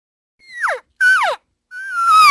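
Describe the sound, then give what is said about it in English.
Three nasal, high-pitched elk cow mews, each sliding downward in pitch, the last drawn out longer and louder than the first two, with no talking. “And they still, you know, when you hear a cow call, does it sound any different than this?”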